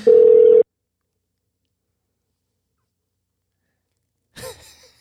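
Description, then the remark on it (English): A loud, steady telephone dial tone, as a phone call is being placed, sounds for about half a second and cuts off, followed by a long silence and a brief breathy noise near the end. “Yeah, let's get him on the phone”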